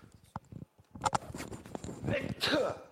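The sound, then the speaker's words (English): A short, sharp sneeze bursts out, with muffled conversational voices continuing around it. “Bless you.”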